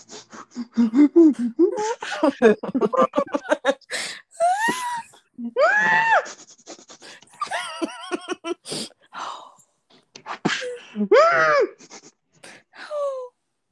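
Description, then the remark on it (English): A person imitates heavy breathing with a series of wheezy, gasping breaths mixed with voiced moans and whimpers, fairly loud, coming in uneven bursts with short pauses. “They'd be like, why are you breathing so heavily, nigga?”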